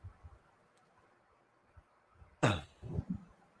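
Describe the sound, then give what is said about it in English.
After a quiet stretch, a single sharp cough bursts out, followed by a couple of softer, rougher throat sounds. Nobody speaks. “Pardon me, had to cough.”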